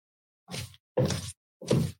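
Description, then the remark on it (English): Three short, papery bursts of tarot cards being shuffled, each a quick rustling flick with a brief pause between, moderately loud, with no talking. “I need a better shuffling method.”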